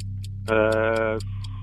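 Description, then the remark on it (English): A quiz timer ticks steadily, roughly four sharp ticks per second, over a low constant hum, with a sustained tonal drone briefly overlapping the middle of the ticking. “Clock starts now.”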